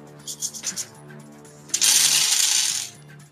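many dice being rolled

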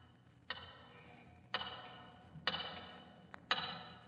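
tower clock ticking

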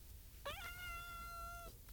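cat meowing angrily

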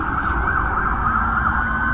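police car sirens

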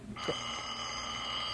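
telephone ringing

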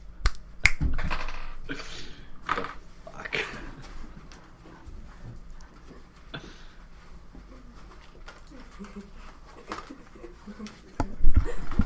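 finger snapping

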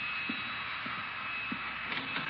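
vacuum cleaner running

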